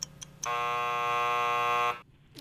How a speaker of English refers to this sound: Oh, just Garfield. After the buzzer.